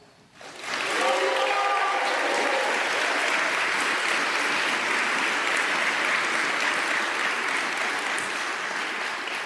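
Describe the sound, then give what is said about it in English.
A crowd at a graduation bursts into loud, sustained applause for those who believed in the graduates, with some whoops and cheers near the start, the clapping holding steady and dense for several seconds with no speech. “So if you are graduating today, I would ask that you take this moment to give a round of applause and a hoot and a holler for someone, anyone who believed in you that you could make it this far.”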